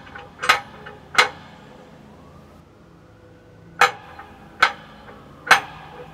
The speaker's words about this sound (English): And another prodigious lock on the inside of this. Look at that monstrous padlock. Try to knock the door. See if they can.